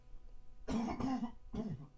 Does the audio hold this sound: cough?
yes